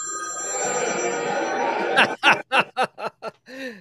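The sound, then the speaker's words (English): A telephone rings with a steady, bright electronic tone for about two seconds, then gives way to a quick series of choppy, laugh-like bursts. “they all running for the phone.”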